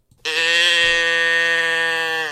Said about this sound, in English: You want to hear the Moo box again? Please. Yeah. Okay, right. Well, we'll hear the Moo box again then.